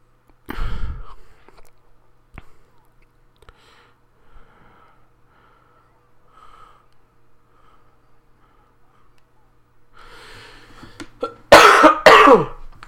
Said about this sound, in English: Wow, I cough loud. I don't mean to.